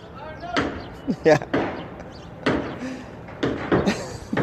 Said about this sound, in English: Hey, how about all that hammering outside my apartment? Hey, louder, please, if you could be louder. Louder? Yes, please, louder.